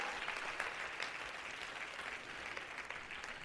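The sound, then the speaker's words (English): A church audience claps hands together during a morning sermon in a dense, steady wash of applause, many overlapping claps blending into a continuous crackle that holds at an even level for several seconds. “Somebody clap your hands this morning and shout, yes!”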